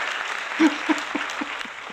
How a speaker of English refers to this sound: And the crowd goes wild, young man.